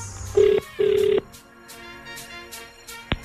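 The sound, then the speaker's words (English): Two long ringback tones sound over a phone line, a steady electronic purr repeating twice with a short gap, followed by quiet line hiss and a faint click. “I really, really hope that they answer. That it rings, this phone can't be off.”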